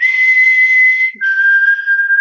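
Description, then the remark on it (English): A person on a dock on a lake whistles at the Northern Lights, two long, steady notes, the second slightly lower than the first after a brief break. The whistling is loud, with no talking. “And I really remembered the intervals people chose to whistle at the lights.”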